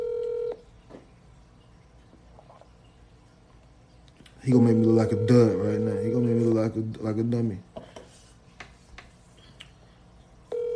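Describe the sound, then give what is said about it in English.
A telephone call to a man who drives trucks rings out, with steady ringback tones at the start and again at the end, while a man talks quietly over the line between rings. “Let me see if I can get him on the phone real quick.”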